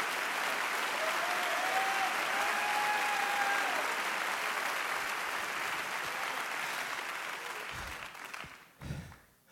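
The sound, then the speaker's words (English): An audience claps hands unto God during a sermon, a dense, steady burst of applause that holds for about eight seconds before tapering off, with a faint high whistling tone over it early on. “Clap your hands unto God and shout.”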